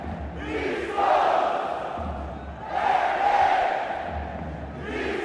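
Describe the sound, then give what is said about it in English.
A full stadium crowd roars and cheers in swelling waves, the loud mass of voices rising and falling continuously, with a low rumble underneath throughout. “That's a full crowd. That's a full stadium.”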